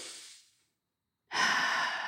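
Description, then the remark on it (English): Two slow breaths with a silent pause between, as part of a slow breathing exercise: a soft exhale fading away, then a steady, airy inhale drawn in through the nose, with no talking. “So you're breathing in through your nose and gently breathing out your nose, or just, I like to breathe out your mouth and then let it go out gently for most of the coherent breath or the box breath.”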